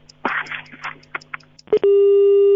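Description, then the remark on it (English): A telephone busy tone sounds after the line cuts off: muffled, scrappy receiver noise and a sharp click, then a loud, steady electronic tone that holds to the end. “Baba Banda is gone. The phone booth.”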